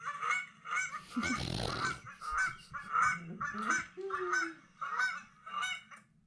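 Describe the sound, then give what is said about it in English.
A goose honks repeatedly, about ten loud, nasal honks in a steady, rapid series, with a brief rustling or flapping noise mixed in early on. “make some goose sounds if you love the creep dive”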